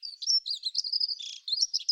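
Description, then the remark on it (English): A relatively high-pitched bird song of rapid, thin chirps and trills, continuous, with a brief buzzy burst in the middle, with no talking. “And here is a relatively high pitched song.”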